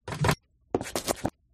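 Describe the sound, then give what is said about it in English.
A door at the zoo opens with broad, scraping bursts: a short rasp, a pause, then a longer grinding scrape, and a final burst starting at the end. Fairly loud, with no voices. “Here's the door.”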